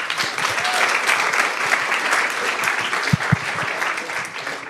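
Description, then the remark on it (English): Steady applause from an audience for two presenters before their presentation, a dense, even patter of many hands clapping for several seconds, with a couple of sharper thumps standing out near the end. “And a round of applause, please,”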